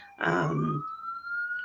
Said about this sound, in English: Sorry, y'all, there's something going on outside of my window, so you hear sirens.